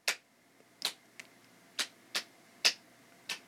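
A single person claps slowly and unevenly, about seven sharp, crisp claps spread over a few seconds with gaps between them, and no talking.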